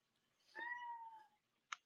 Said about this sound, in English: My cat meowing in the background right now, that's what's he answered that, whatever it was. He said, you're not feeding me.